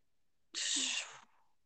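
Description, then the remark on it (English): A single sharp sneeze bursts out suddenly, loud, a breathy hiss that cuts off after under a second with no talking around it. “God bless you”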